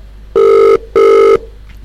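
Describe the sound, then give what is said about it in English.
Two evenly spaced bursts of a telephone ringback tone on an outgoing call to a guest, each lasting about half a second with a short gap between, heard clearly on its own with no voices. “We're going to ring up Ann Schofield now, so hopefully he picks up the phone and he hasn't got us on in the background.”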